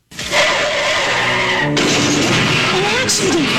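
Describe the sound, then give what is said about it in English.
Car tires screech in a long, loud skid, then a car crash bursts in with harsh clattering noise that lingers to the end, intense. A child was in the car. “An accident. The humans had an accident. There was a child in the car.”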